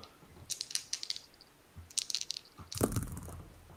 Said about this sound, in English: Oh, why the dice flew away.